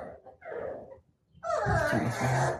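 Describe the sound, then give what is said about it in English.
Dogs scuffle in play, biting each other's faces, giving soft whimpers and yips in two bursts, the second louder and more frantic, with snuffling breaths and rough mouthing noises. “The dogs are biting their faces. That's not good.”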